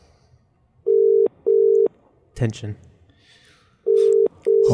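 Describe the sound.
An outgoing phone call's ringback tone, a steady electronic hum sounding in two double-pulse rings separated by a pause, loud and clear, with a voice briefly speaking between the rings.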